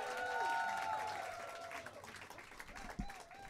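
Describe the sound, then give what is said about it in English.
A comedy audience applauds steadily as a comedian is brought to the stage for stand-up, a dense wash of clapping with a few high whoops and cheers riding over it, loudest at the start and easing slightly toward the end. “Start clapping right now. Let me really hear it.”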